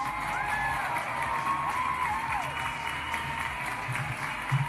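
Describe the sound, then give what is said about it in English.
A crowd claps steadily and densely, with scattered cheers and whoops rising above the applause throughout the few seconds. “Let me get an applause for that.”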